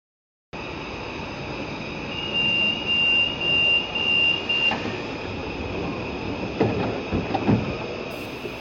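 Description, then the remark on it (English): A train pulls away along the rails just after the people waiting missed it, rumbling with a steady high metallic squeal from the wheels, the noise easing off after a few seconds, with a few clanks near the end. “Yeah, we should probably take the train and leg it out of here.”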